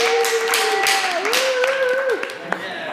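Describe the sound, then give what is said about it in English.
Audience applause at a Saturday night church service, a steady wash of many hands clapping for about three seconds, with sustained voices whooping and calling out over it. “Round of applause.”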